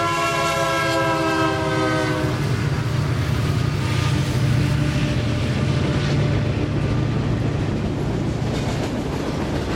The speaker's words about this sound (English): This recording is called Trains. It's August 30th, 2005.